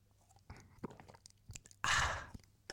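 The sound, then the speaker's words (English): Quiet mouth sounds: a few small wet clicks, then one short, loud slurping sip of wine, followed by a swallow-like click. No talking. “Like, my throat is dry now, so I'm going to have to take a sip of wine and just let it settle.”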